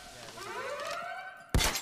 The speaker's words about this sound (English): Oh, damn. They hit the alarm. Take out the cameras. We've already gone loud, I mean.